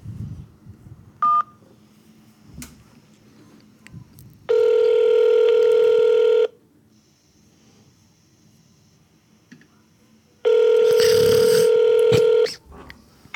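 A single short phone keypad beep as 1 is pressed to speak with an associate on a call to a GameStop store in Kahala Mall, then two long, loud ringing tones on the line, each lasting about two seconds with a quiet gap between them and faint background noise.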